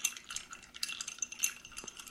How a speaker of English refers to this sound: It's a small glass, so we only have 3 ice cubes in it right now. So you're going to dilute it a little bit? Yeah, and as you stir, I'm going to give us 2 ounces of rye.